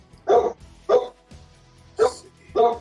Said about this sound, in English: Sorry about that. My dog is guarding the property tonight.